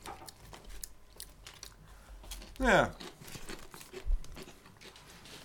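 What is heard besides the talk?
crunchy snack being chewed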